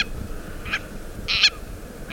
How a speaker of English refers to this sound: Or perhaps the seeds hitched a ride on the ancestors of this Akeapola owl we're hearing, caught in a storm and blown to the Hawaiian Islands.